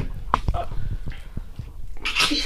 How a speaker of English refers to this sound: Sorry, I had the cough. I don't know what the hell that was.